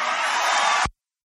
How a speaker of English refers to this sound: Oh, man. Boy, they are sure cheering for this. They're lapping this nonsense up.